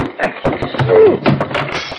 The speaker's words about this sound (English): This dresser or something's in the way, and I'll kick it over.